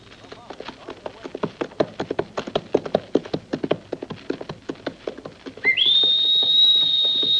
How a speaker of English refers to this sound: The Hawk's whistle signals another exciting episode in the story of Hawk Larrabee, starring …